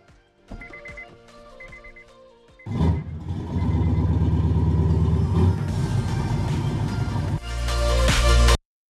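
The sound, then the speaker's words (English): A few electronic chimes ring out, then the engine of a white 2015 Ford Mustang EcoBoost fires up and rumbles steadily before revving hard to a loud, roaring peak at the end. “Right now, I'm in a 2015 Ford Mustang EcoBoost, and I've been enjoying the EcoBoom life for 4 years at this point.”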